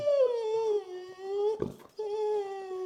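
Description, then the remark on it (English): A female dog, Lulu, whines in a long, low, moaning tone that slides slowly downward like a whale call, breaks briefly with a rough huff, then resumes, fairly loud, while being coaxed to climb one more step. “She sounds like the whale in Finding Nemo.”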